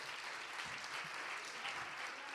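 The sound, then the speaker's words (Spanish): Steady applause from a group for some young children, a dense, even wash of many hands clapping at a moderate level for a couple of seconds without pause. “Vamos a dar un aplauso a estos pequeños.”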